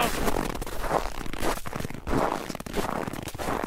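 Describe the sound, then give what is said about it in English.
Footsteps crunch over hard, frozen snow in a steady rhythm, each step a loud, gritty squeak and crackle, with no voices. “You know what I'm talking about, walking on the hard, crunchy snow.”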